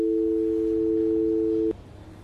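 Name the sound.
phone tone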